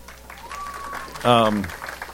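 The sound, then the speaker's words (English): An audience claps in a steady, dense patter at news of a little girl's adoption, with a rising whistle and then a loud, brief cheering voice over the applause. “I didn't have anything to do with it, so you're clapping for God.”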